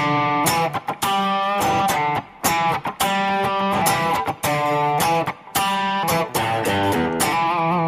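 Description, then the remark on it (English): A distorted electric guitar plays a punchy, rhythmic lick of short stabbed chords and notes, with bright harmonic-rich tone and brief gaps between bursts, loud and without any voices. “I just showed you a lick”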